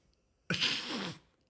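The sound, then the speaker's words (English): A sleeping dog named George snoring: one raspy, breathy snort lasting under a second, noisy and hissing with a low rattling undertone, standing alone against near silence with no talking. “Can you guys hear George snoring?”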